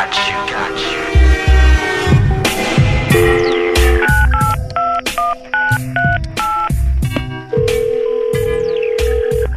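A rapid string of telephone dialing tones, short, loud beeps of shifting pitch tapped out one after another, layered over a thumping low beat that runs through the whole stretch, as a call is placed to residents about a lost bag on Big Boy's Neighborhood.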